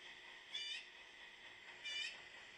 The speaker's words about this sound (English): I was posting last week about the bird in the tree that is making all this fucking noise. It is the loudest bird.